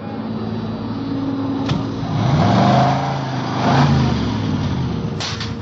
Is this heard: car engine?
yes